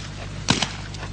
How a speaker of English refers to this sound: It still sounded like just one shot to me.